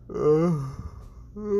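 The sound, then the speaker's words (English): A drawn-out, voiced yawn with a wavering, sliding pitch that fades into a brief pause before another low vocal sound begins at the end. “Sorry about that yawn.”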